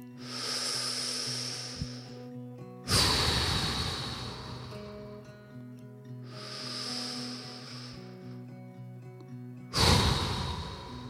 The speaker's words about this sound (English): We started with three deep breaths. Let's end with three. Come on.